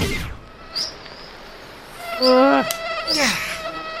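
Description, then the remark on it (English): A thin, high-pitched mosquito whine drifts in and out outdoors in summer, rising and falling in pitch as it swoops loud, then fades, with a second brief pass near the end. “This portion of summer brought to you by mosquitoes.”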